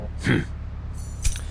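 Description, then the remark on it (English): A bunch of keys jingles metallically as it's tossed, a brief bright jangle followed a moment later by a second sharp clink as they're caught, fairly loud against quiet. “You got the keys?”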